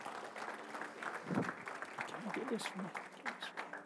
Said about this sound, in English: Come on, give God a big hand clap of praise all over the house.